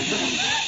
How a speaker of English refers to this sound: are you hissing me?